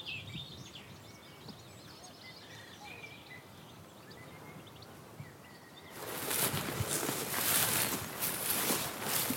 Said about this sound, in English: But the song is so different. That willow warbler descending call compared to the chiff-chaff makes it really easy to tell which you're dealing with. And here it's very much the willow warblers like this one.